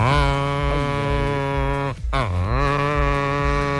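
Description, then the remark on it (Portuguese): A berrante cattle horn blown in a long, loud, buzzing blast, with a brief break and a sagging, bending pitch near the middle before the steady tone resumes. No one speaks. “E o pacote Pantanal, hein? Ah! Vai ter berrante?”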